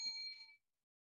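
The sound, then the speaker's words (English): A single bright bell rings once with a clear metallic tone that fades out within about half a second, followed by silence. No voices are heard. “I'm gonna ring the bell.”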